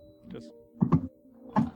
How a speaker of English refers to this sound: And roll me a D10, Bill.